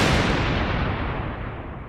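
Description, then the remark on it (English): A loud clap of thunder rolls into a dense, rumbling roar, its crackling upper edge slowly dulling over two seconds while the deep rumble keeps going. No one speaks. “When it's cue the thunder, just literally.”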